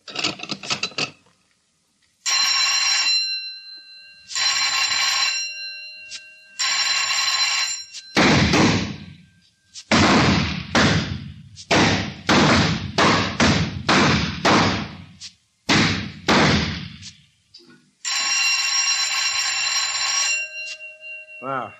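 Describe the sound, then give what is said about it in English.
Three bright, buzzing bell rings sound in steady succession as the signal in a rapid-fire shooting round, then a rapid string of loud sharp gunshots follows before one more sustained bell ring closes it out. “Load and lock. Fire on third bell.”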